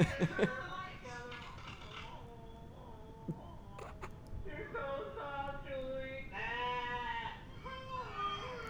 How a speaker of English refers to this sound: Did you hear that wonderful overdub of the sheep yeah, buying? That was funny. Bah. Bah. Bah.